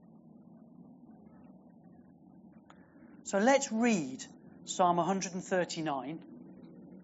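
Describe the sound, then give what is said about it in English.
A low, steady rumble of noisy motorbikes passing outside hums in the background, moderately faint, while a man begins speaking over it partway through. “139, after all those noisy motorbikes have passed.”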